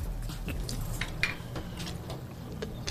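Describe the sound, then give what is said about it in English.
Someone slurps a hot shot drink after a toast, with several short, airy hissing pulls scattered across a steady, noisy background, plus a faint clink or two. No one speaks. “Oh, that's slurp. That's you.”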